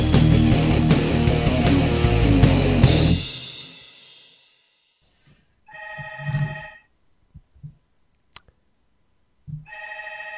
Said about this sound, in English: Someone want to get that telephone? I appear to be getting a phone call. Give me a moment.